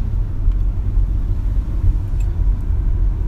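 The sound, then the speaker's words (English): A car's low engine rumble and road noise hum steadily from inside the vehicle as it drives a winding road with many twists, turns and some hills, under a 35 speed limit; a continuous deep drone with slight swells at moderate speed. “There are a lot of twists and turns. Speed limit's 35, but I dare not go that fast.”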